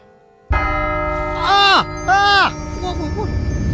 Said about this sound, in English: The chimes. Did he say 1 o'clock?